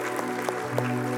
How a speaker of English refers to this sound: Church, let's clap for those brave people that raised their hands. That's so good. So good.